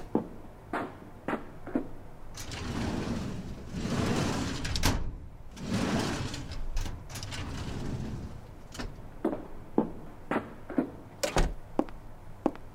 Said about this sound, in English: go out into the hallway and see what it says on the two red filing cabinets. I know what they say, Chief. Get out there! Open a random drawer in each one of them, then come back in here.